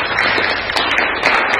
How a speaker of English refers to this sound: Oh, you can clap.